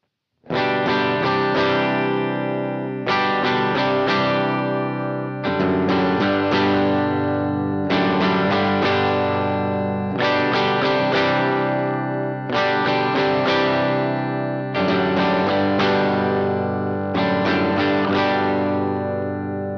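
Electric guitar played through an amp sim with the cab sim turned on, plus reverb and a Zwingli SDD preamp, with amp-style overdrive and a wash of reverb, strummed chords repeating in a steady rhythm of about eight bursts, loud with no talking.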